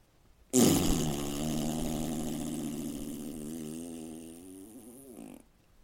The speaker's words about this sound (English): Ray and the bull locked eyes. Ray nodded his head, and the bull rocked a tremendous boom from his bottom.